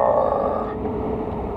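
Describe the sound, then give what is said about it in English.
A harsh, throaty cough that drags on for over a second as one loud, rough, grunting burst, with no talking around it. “cough button, cough button. Where is it? There is none.”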